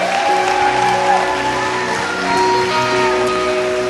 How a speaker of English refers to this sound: Let's just give the Lord a mighty clap offering. Hallelujah.